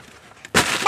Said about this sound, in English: Thunder. It is.